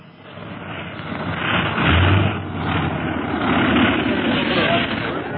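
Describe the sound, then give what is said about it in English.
A steady airplane engine drone, a low rumble with a broad roaring wash above it, swelling slightly and holding loud as the plane lands in the square and taxis, with no clear speech. “Give him room to taxi the plane towards us.”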